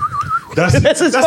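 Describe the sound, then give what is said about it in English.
A person imitates a TV character's warbling, theremin-like whistle: a thin wavering tone sliding up and down, then breaking into a louder, wobbly yodel-like vocal warble. Fairly loud, with no other sounds. “That's as far as I can get before I start laughing, because he did that weird yodely whistling thing to control people. I mean, it's almost like a theremin with his mouth.”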